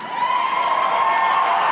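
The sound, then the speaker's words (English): A crowd applauds and cheers steadily for under two seconds, a dense wash of clapping with bright shouts and whoops riding on top at an even, loud level. “What an applause.”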